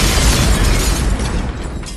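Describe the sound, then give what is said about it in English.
A loud bomb explosion sound effect marking a "bombs of the week" segment: a heavy, booming blast of rumbling noise that rolls on for about two seconds and gradually thins out, with no voices. “So these are, let's go ahead and call these the bombs of the week.”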